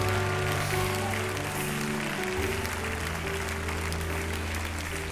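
A large audience claps steadily and continuously during a worship service, a dense, loud wash of hands throughout, with sustained keyboard or organ chords playing underneath.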